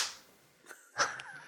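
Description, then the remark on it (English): A few sharp hand claps land unevenly after a brief hiss, bright and moderately loud, with a faint airy tail between them and no talking. “Give him a clap.”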